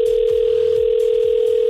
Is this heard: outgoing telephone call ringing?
yes